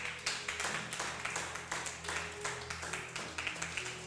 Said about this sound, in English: Is that how you are clapping for a wonderful message you've received?